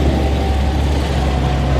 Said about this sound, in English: Wait for this big one to go past. So you'll see here we've got a 100-ton dump truck that's just coming past us now with carrying a bit of sand.